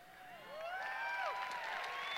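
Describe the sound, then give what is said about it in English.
An audience breaks into applause and cheering, with rising and falling whoops riding over a steady wash of clapping that swells after a moment and holds at moderate volume. “Don't clap.”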